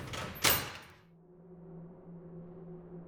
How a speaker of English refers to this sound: I wasn't sure how long I'd been out, but the sound of a door opening knocked me out of my proverbial nap.